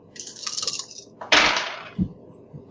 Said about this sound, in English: Okay, so I can roll 6 dice, which is not super awesome.